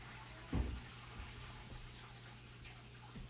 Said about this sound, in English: I hope you guys like the sound of rushing water because water just rushed. And we'll take a silent moment to honor that.